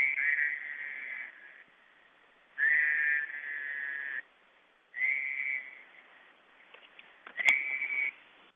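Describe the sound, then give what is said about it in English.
A toad's breeding call: four long, high, musical trills with short pauses between, heard alone over a thin, band-limited cell phone line from a phone set down right next to a puddle, left as a phone message, with no one talking. “A few times he's called me up on his cell phone, and he put the cell phone like right down next to the puddle so that I got this message of the toad doing his breeding call into my cell phone.”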